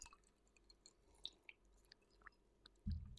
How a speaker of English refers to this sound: So I'm a little like, And of course, Red Bull. First sip? Well, my second sip?